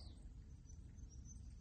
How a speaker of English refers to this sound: And I'm outside and I'm hoping that you'll hear all the Tweety birdies and the Squawky birdies.